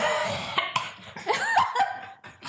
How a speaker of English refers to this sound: You just coughed, breathed in that foam. I did.